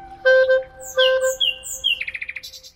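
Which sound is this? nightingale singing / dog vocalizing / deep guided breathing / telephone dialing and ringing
nightingale singing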